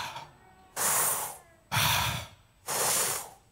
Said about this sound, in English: So when I say ruah, is me breathing in, is me breathing out.